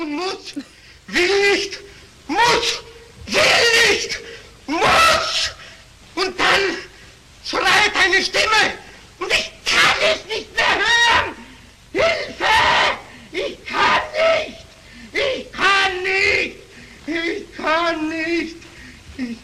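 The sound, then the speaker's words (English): Actor Peter Lorre screams and cries out over and over in loud, anguished bursts separated by short gasping pauses, continuing throughout, in the film M. “This is where I insert Peter Lorre screaming.”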